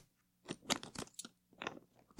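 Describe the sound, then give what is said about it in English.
A door combination lock being worked: a quick, irregular run of crisp mechanical clicks and clacks, two short clusters with a brief pause between, ending in a sharper final click. No voices. “Enter that number into the lock on the door.”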